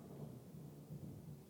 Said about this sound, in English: It's fucking thunder.